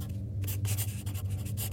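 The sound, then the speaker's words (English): A pen scratches across paper in quick, irregular strokes, each a soft raspy hiss, as a warning entry is written in a book, over a steady low hum with no voices. “As I write this entry, I am now old and bound to a chair.”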